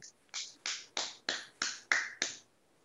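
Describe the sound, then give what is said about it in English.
Seven crisp hand claps, a slow clap, in a steady, evenly spaced rhythm, each sharp with a quick decay, with no voices around them. “Slow clap.”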